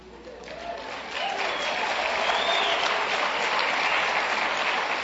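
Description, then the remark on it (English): A church audience breaks into applause at the announcement of the National Day of Prayer, starting moderately and swelling to a full, steady wash of clapping within a second, then holding at a strong, even level with faint voices mixed in. “That means everyone who clapped will show up.”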